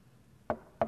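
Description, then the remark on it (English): Two sharp knocks on a door by soldiers, at the place where a prisoner is held under house arrest, evenly spaced, against a quiet background with no voices. “They knock on his door and say, Paul, we're going to take a walk.”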